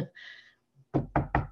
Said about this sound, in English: Knocking on wood, but I don't have my brain is working really well.